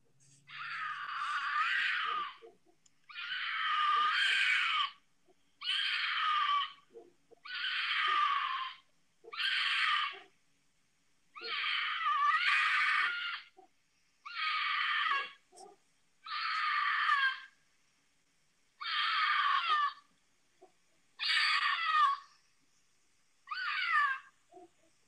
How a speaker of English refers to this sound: All right, here is that cougar scream.